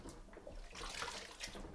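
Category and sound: household object, water splashing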